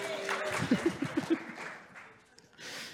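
An audience breaks into applause, a dense crackle of clapping mixed with a few cheers and voices, swelling loudly before thinning out, then picking up briefly again at the end.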